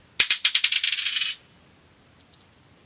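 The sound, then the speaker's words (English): The second of five dice is thrown in a prize draw. It clatters onto a hard surface in a quick burst of bright, rapid clicks lasting about a second, followed by a few faint taps as it settles. “Throw the dice number 2.”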